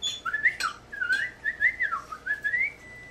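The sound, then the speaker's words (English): A person whistles a rapid, warbling series of sliding chirps and beeps, imitating a little robot's electronic chatter, fairly loud with no talking. “Okay, but you have to whistle it.”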